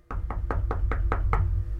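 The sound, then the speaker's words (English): Six quick, evenly spaced knocks on a door, sharp, delivered in a steady rhythm over a low background rumble, with no voices. “The Proud Boys, the Oath Keepers, these agents, my friends, remember, went to their doors.”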